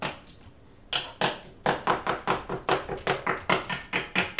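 Quick, sharp taps on a phone screen as a text to Whitey is typed, about fifteen light clicks in an uneven, steady stream after a brief quiet start, with no voices.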